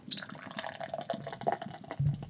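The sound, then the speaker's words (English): A drink poured steadily into a glass for a toast, a busy trickling splash with fizzy, dripping detail, ending in a brief louder low burble after about two seconds. “Oh, what a good sound. Oh, that's a good sound. Oh, man. This, my friends, is a cheers to you.”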